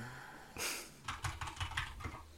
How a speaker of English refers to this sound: So, as in, let's see here, I'm checking on my notes. I apologize for the keyboard noises, everybody.